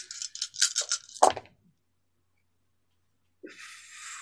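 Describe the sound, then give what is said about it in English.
Dice, including one hunger die, are rolled for a strength and athletics check and rattle and clatter in a quick burst of about half a dozen sharp clicks ending in a louder knock, then silence before a steady soft hiss comes in. “And should I roll any hunger dice on it?”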